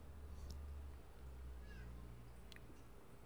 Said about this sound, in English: And the cats keep meowing. I love them so much. It's Thor and Bentley. Call Bentley Bear Bear sometimes. And they're just so cute.